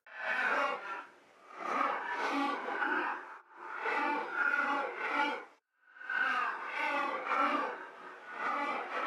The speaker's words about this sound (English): And here are the deer sounds. What I've got here is already chopped up, so it's pulsing. I think I did that before I affected them at all. Here are the deer sounds after I've manipulated them.